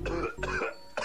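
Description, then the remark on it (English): A few harsh coughs mixed with throat clearing, three rough bursts in quick succession with brief pauses between them, loud and with no talking. “It's better to cough.”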